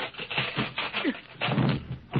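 A series of heavy wooden thunks and cracks as the Tin Man's axe chops down a castle door where Dorothy is locked in, the blows coming in a quick, uneven rhythm with a dull, muffled tone.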